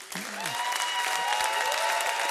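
Sustained applause and standing ovation from a large crowd for the Echo volunteer team, a dense, steady wash of clapping with some whoops and cheering rising above it, loud throughout.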